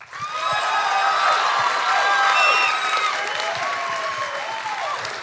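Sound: audience applauding and cheering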